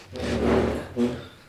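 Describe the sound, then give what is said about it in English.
Chairs being dragged across the floor by a dog: a long, grinding wooden scrape followed by a shorter second one, with a low groaning rumble underneath. No voices are heard. “Like, what's that noise? The dog is moving chairs.”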